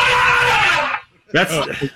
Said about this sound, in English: Good move. These are elephant sounds. They're really terrible.